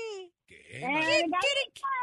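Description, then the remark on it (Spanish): A voice imitates a rooster's crow as part of a game: a short rising call, a brief pause, then a long, strained, wavering cry that breaks into a few choppy bursts and ends on a higher note. “El gallito. Un gallo.”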